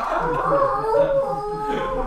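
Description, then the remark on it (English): An angry wolf howl as a mirror is struck and cracks: a sustained, wavering cry that rises and falls in pitch for about two seconds, fairly loud with a rough, growling edge. “Sparky howls very angry”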